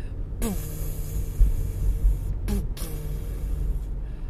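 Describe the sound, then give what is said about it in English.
A voice imitates the deep boom of an old Roland 808 synthesizer, a low sustained hum that slides downward in pitch, followed by a second, similar swooping boom, fairly loud. “Sorry, I made that noise because 808 is the signature Detroit sound from an old Roland 808 synthesizer thing.”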